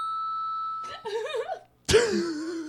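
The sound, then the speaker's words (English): A small bell rings with a bright ding, its thin tone hanging briefly, followed by short vocal noises and a sudden burst of sound. “Well, I had a funny story I was itching to tell, and now I've told it, so I'm gonna ring this bell.”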